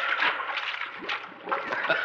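Continuous splashing and sloshing of water as someone ducks their head under the water and pulls hard at rawhide to stretch it, a busy churning wash that swells and eases over about two seconds, as if someone is thrashing about at the surface.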